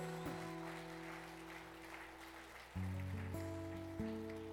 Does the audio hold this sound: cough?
no